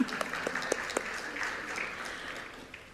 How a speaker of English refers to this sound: Is someone clapping? No.